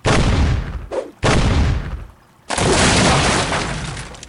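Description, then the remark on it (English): Loud crashing as wooden ship booms are smashed apart with a gold harpoon, three heavy bursts of splintering noise with a short lull before the last, long rumbling crash. “He used that gold harpoon and smashed the ship's booms like they were a pair of twigs.”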